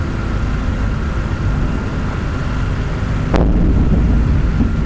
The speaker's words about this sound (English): We can hear the explosions and shelling very loud. I can't see the shells.